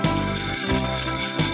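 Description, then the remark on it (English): Loud, bright jingling of small bells, the product 'Jingle Bells Just the Bells', shaken continuously, with a shimmering high tinkle and a couple of brief dips in a rhythmic pattern; no music or voices. “Jingle Bells Just the Bells. Festive magic is just a ring-a-ding away.”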